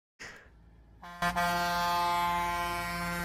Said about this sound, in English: So there's... lots of people honking away, coming in.